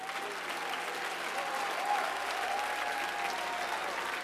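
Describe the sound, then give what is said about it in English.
An audience at the First Pentecostal Church claps their hands to Jesus in steady, dense applause that holds at an even level throughout, with faint voices and a thin tone threading through the crowd noise. “For those of you that love him, why don't you clap your hands a little louder?”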